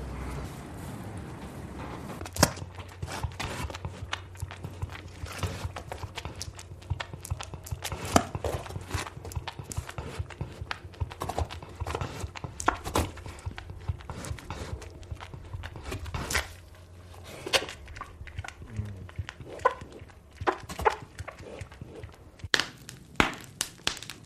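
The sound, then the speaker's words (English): Two cows shuffle and stamp while calves are suckled, hooves knocking irregularly on a hard floor with scattered thuds, over a low steady hum that drops away partway through. “Anyway, I'll try and get these two cows to suck.”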